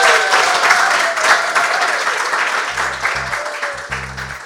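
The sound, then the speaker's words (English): An audience claps in a dense, sustained round of applause, loud and steady throughout, with a low hum of music starting underneath toward the end. “So, everyone, can you please give David a huge round of applause?”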